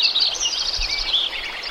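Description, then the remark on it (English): A dense spring chorus of many birds singing at once at a Lincoln Meadow forest site before selective logging, overlapping chirps and trills forming a steady high-pitched wash, moderately loud and continuous, with no voices present. “I said, any chance I can go out and record before you do the selective logging at this site and see what the density and diversity of bird life is in the spring?”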